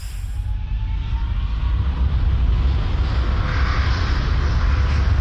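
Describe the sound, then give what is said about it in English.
A steady, loud airplane drone fills the whole stretch, a heavy low rumble with a broad roar over it, holding constant without any voices. “Those are plane sounds.”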